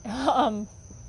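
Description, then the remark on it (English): A single drawn-out, nasal quack from a duck trying to get in, lasting about half a second, then fading into quiet background hiss. “And my duck is quacking to try to get in.”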